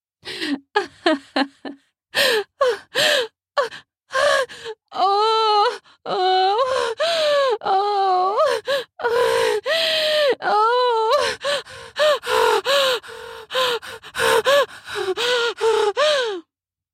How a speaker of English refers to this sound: … laughter suddenly turned into pants and moans.